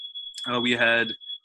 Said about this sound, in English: Fire alarm's going off. I think we're good.